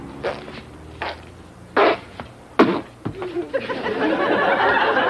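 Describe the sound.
A person blows several wet, raspy mouth-fart noises in short bursts, simulating hanging oneself, then an audience breaks into sustained laughter that builds and fills the rest of the moment.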